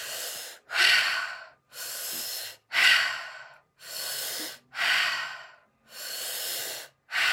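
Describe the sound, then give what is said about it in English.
Deep breaths drawn in and pushed out through the mouth during a guided meditation, about seven strong breathy rushes in a steady rhythm, fairly loud with brief silent gaps between them, no talking. “See yourself connected to those beings around you as we now breathe again. In through your mouth, out through your mouth. Okay, breathing in.”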